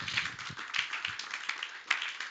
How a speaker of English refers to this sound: Come on, clap your hands for God.